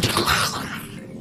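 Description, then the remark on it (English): A loud explosion as all the exploding tomatoes inside the Ratmobile detonate at once, bursting out all at once in a dense crackling roar that slowly fades into a low rumbling tail over about a second. “And then all the exploding tomatoes inside detonated at the same time.”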